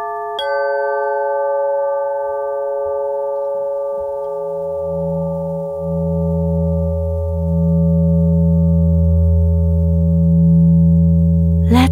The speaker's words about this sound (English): And tuning in now to the sense of sound. Listen to these tones.